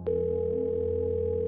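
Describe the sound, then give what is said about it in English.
A steady telephone line tone hums continuously from start to finish, a flat electronic drone with a sharp click at the onset, fairly loud, with no voices; a phone call effect for a call received by police at about 3 a.m. “Either way, it was a bad idea because at approximately 3 a.m., the police received their first phone call.”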